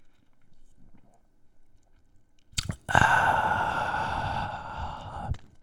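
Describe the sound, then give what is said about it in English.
After a quiet moment, a couple of soft clicks lead into a steady, airy slurp of beer being sipped for about two and a half seconds, ending abruptly. No one speaks. “Let me get a sip of this beer because I'm running dry.”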